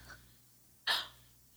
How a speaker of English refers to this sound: I'm just yawning. Sorry, excuse me.